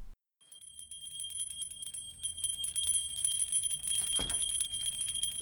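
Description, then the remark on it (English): A small hand bell, rung to summon someone, jingles rapidly and insistently for several seconds, its bright ringing tone unbroken, with a dull thump partway through and no voices. “I need my other bell. We agreed. One by the bed and one by the toilet.”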